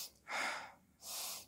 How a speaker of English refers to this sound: And right now, He's given me air to breathe. I'm breathing.